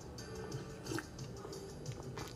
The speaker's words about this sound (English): Hang on a second. Let me have a sip of coffee here.